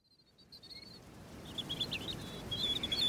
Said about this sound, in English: I can hear the birds. You're at Arkwright Lake, aren't you?